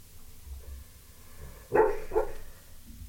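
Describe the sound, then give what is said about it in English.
A sleeping dog named O'Neill, dreaming, gives two short, muffled yelps in quick succession, soft dream-like whimper-barks. “He's doing the little dog. He's doing doggy yelp.”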